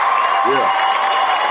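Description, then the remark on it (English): Steady, continuous applause from a crowd, given for last week's guest, fills the moment at an even, fairly loud level, with a brief low vocal cheer rising out of it early on. “And I got to say, thank you so much and give him his applause from last week.”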